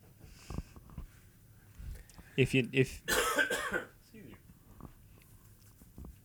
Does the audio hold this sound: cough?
yes